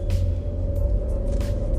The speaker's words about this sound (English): What I got behind me? I can't see. Nothing. All right. Just a truck. Hey, you can't say just a truck.